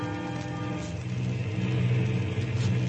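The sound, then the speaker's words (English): A steady, droning propeller-plane engine of a transcontinental plane flying westward through heavy skies on December 24th, 1944, hums continuously, with a deep low throb and layered tonal whine, holding an even loudness throughout with no voices. “Through heavy skies, a transcontinental plane wings its way westward.”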